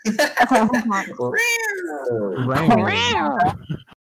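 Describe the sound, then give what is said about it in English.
A voice imitates a cat with loud, drawn-out meows and a wavering yowl, sliding up and down in pitch, preceded by a short burst of vocal chatter. “Cat noise.”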